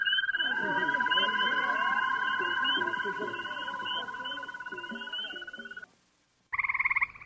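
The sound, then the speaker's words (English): A dense chorus of common garden toads trilling continuously in overlapping, steady high-pitched buzzing, with lower warbling calls beneath; it cuts off briefly, then a loud trill resumes. “And listen to the way they all get together into these toad choruses, all twirling away.”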